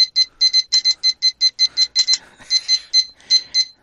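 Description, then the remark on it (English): A kitchen timer beeps rapidly and insistently, a steady run of sharp, high-pitched electronic pulses, loud, with no voices over it. “All right, I'm setting the timer.”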